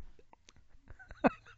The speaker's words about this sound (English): That was weird. That was supposed to be a burp, and it just didn't happen.